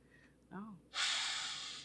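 A brief murmured vocal sound is followed by a long, loud sniff at another person, a breathy inhale through the nose lasting nearly a second.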